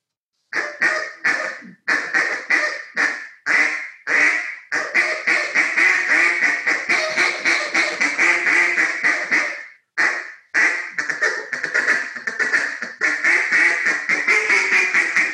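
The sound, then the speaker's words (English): A duck call blown to imitate duck quacks, loud nasal quacks starting as separate high-pitched young-duck honks, then running into a long rapid chatter, a brief break, and another fast string of quacks. No talking. “That young duck that you started off with, that high-pitched young duck, rah, rah, rah, sounds amazing on the live duck.”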